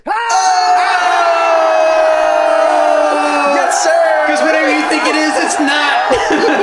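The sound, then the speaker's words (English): A canned crowd-cheering sound effect, a new button on a soundboard, bursts in abruptly: a loud, steady roar of many voices with whoops and yells, holding at full volume for about seven seconds. “The crowd pleaser.”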